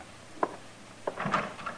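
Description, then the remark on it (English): A door is opened to let a woman in: a sharp latch click, a second knock a moment later, then a short rattling scrape as it swings. Fairly quiet, with no voices. “I'll open the door for her.”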